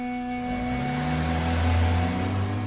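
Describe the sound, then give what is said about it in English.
A car engine runs steadily and then rises in pitch as the car of Prince Mohammed bin Nayef pulls out of the gates of the king's palace in Mecca, a continuous mechanical drone with no voices. “As his car pulled out of the palace gates”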